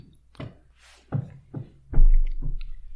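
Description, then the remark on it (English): A dog's wagging tail thumps against a wall, about five dull, low knocks at an uneven pace roughly every half second, with no one speaking. “Your wagging tail is beating against the wall.”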